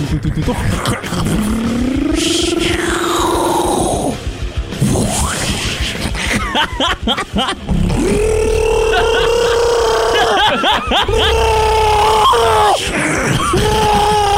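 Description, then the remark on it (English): A voice imitates a vehicle grinding over sand, loud, with growling, revving tones that rise and fall in pitch, broken by brief pauses before surging again. “This is the sand that's being driven over.”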